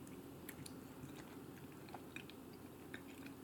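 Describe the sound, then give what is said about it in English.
Quiet chewing of a mini Snickers chocolate bar with soft, sticky mouth sounds and occasional small crunchy clicks, steady throughout with no talking. “Excuse me, I was caught me chewing something. I'm sorry. Got a little mini Snickers because I wasn't quite feeling like myself at the commercial.”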